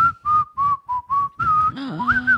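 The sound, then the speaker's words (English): Someone whistles a short tune by mouth, a string of clear sustained notes, fairly loud, broken by brief gaps, ending with a sliding, wavering note. No talking. “Then all of a sudden, you hear that whistle.”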